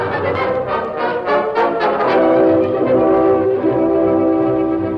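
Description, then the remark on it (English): A freight train rolls slowly around the base of Bluebell Mountain with a steady rhythmic chugging, while a sustained, chord-like horn tone hangs over it, loud, with no voices. “As the train circled the base of Bluebell Mountain, moved slowly out of sight”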